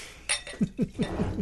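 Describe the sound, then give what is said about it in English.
A beer glass clinks while being rinsed: one bright clatter, then a run of five soft, evenly spaced knocks, each a fifth of a second apart, with no talking. “Let's rinse this glass out.”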